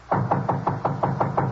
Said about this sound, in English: went up to the fourth floor and knocked at the door.